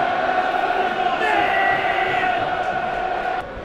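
A large stadium crowd at an evening football match involving Bournemouth roars and cheers around the 28th minute, in a steady, loud, dense wall of voices that holds for several seconds before dropping off abruptly near the end.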